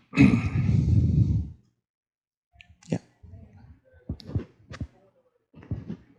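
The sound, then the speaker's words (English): A loud, heavy breath blasts into the microphone for over a second, followed by softer, uneven breaths with faint thumps and clicks. “I'm breathing heavy.”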